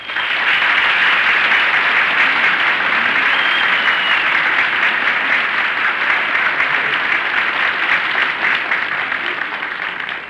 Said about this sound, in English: Who was that applauding? I don't know.